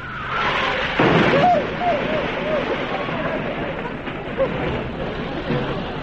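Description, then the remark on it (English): A car swerves and hits the curb as another car cuts in and forces it off the road: a sudden heavy thump, then wavering squeal-like tones over a steady rumbling roar, with another sharp knock a few seconds later. “The car's trying to cut in.”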